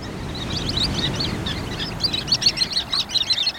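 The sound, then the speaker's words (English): A flock of Sanderlings, small pale sandpipers, gives rapid, high chattering calls in bursts at the water's edge of a shoreline, many birds overlapping, over a steady low rumble of surf or wind. “These small sandpipers are called Sanderlings.”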